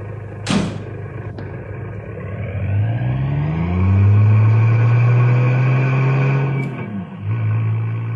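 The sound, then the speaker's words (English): A car door thumps shut, then a car engine starts and revs, its pitch climbing steadily as it pulls away. The engine is loud, with no talking. “Shall I return here with the car?”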